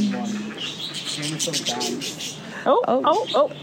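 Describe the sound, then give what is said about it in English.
Cockatiels chirp repeatedly in short, high tweets and whistles, with a quick burst of sharper warbling calls near the end and what sounds like people talking in the background. “They're cockatiels. They're like Pikachus.”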